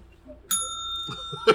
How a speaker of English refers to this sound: Ring that bell.